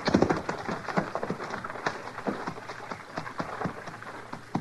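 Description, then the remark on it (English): Horses' hooves clop and scuffle over rough ground as the horses are taken off a trail, in an uneven, shuffling rhythm, moderately loud, with a faint rustling background and no talking. “I don't know, but let's get these horses off the trail.”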